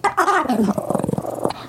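A dog gives a short descending whine, then a rough, pulsing growl that rumbles steadily for about a second before trailing off.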